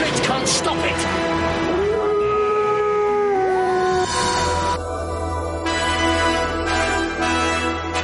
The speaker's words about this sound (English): Every full moon, the howling rings through the valley. This is a man who becomes an animal. A werewolf? But it can't be a natural wolf.